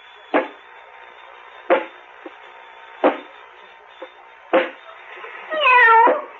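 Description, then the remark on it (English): A row of evenly spaced mechanical clunks, roughly one every second or so, then a single short, high kitten meow rising and falling near the end as a robot, Robot 23, picks up and pets the kitten. No one speaks. “Go over to the kitten. Pick it up. And pet the kitty.”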